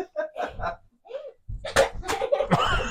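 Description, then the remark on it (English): A few sharp smacks of a woman's hand slapping her own face ring out in quick succession, mixed with bursts of laughter and voices around them. “You made her hit herself, dude.”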